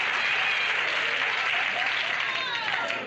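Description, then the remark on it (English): A crowd claps and applauds steadily, a dense wash of many hands that stays loud throughout and eases off slightly at the very end, with faint voices mixed in. “The audience is applauding because he's getting what's coming to him.”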